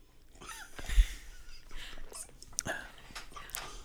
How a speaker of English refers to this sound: Hang on, let me drink some water.